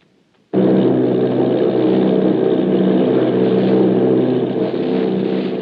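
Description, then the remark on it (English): After a brief quiet moment, a loud, steady engine drone kicks in and holds constant, a dense low rumble of heavy propeller aircraft engines: a formation of eight army bombers flying off Bayonne, New Jersey. “Army bombing plane V-843 off Bayonne, New Jersey. Lieutenant Vogt commanding 8 bombers, reporting to Commander Fairfax Langham Field.”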